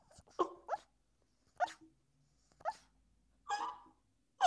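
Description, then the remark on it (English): A puppy lets out soft, muffled little barks and whimpers in its sleep, five quiet yips spaced irregularly with near-silence between them, without any talking. “I was like, oh, this puppy's barking in his sleep and it's really cute.”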